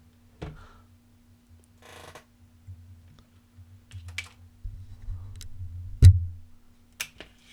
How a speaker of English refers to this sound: Here's why my chair squeaks so much. I'm talking to a microphone. And it's on a microphone stand. And then the chair's got four legs. So I'm constantly having to turn the chair so the legs don't hit the base of the microphone stand.